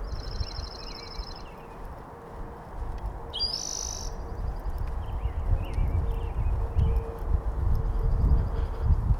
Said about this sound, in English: It's a lovely morning. A little breeze coming up from the south. Overcast skies. No visible firmament, but we're trusting that it's still there. Birds are going at it on many levels.